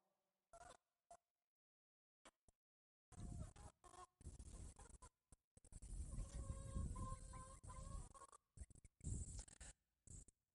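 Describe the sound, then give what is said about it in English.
A flock of pastured broiler chickens, run at about 500 per acre and moved every day, clucks and chirps outdoors, a few scattered calls at first, then a dense, overlapping chorus of busy clucking that carries on steadily to the end. “We run about 500 broilers per 1 acre.”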